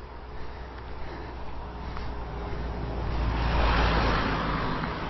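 Steady road noise from traffic, with a vehicle approaching and swelling louder around the middle before easing off slightly, a broad rushing hum over a low engine rumble.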